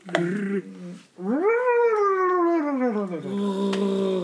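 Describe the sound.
A person imitates a yeti call, likened to a Chewbacca noise: a short throaty burst, a brief pause, then a long loud howl that swoops up and slowly slides down into a lower, gravelly moan.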